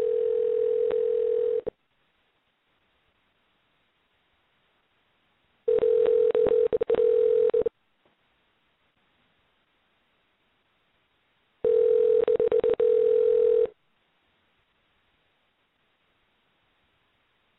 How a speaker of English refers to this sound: Yes, I do, brother. It sounds like it's ringing.